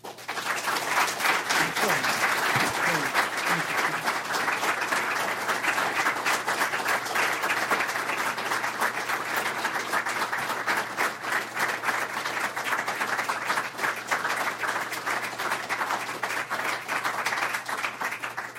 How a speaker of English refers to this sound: Well, I think you can see from that sustained applause, as we say in the law, res ipsa loquitur. The case speaks for itself.